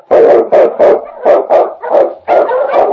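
husky sled dog barking

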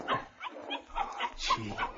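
puppy barking

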